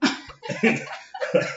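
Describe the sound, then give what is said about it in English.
Three harsh coughs in quick succession, each a rough burst with brief pauses between, as if someone is deliberately coughing at someone. “Were you like, you cough?”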